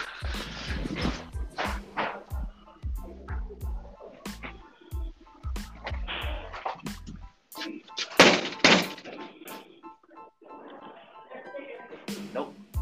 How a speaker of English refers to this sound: I'm about to go see why everybody is banging on people's doors.